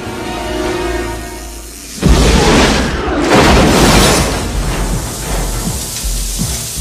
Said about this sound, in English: Fucking huge explosion